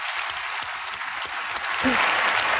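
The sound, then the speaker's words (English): Sustained audience applause, a dense wash of many hands clapping at once, steady and fairly loud throughout, swelling slightly toward the end with no individual claps standing out. “Trying not to have too much clapping in your ears.”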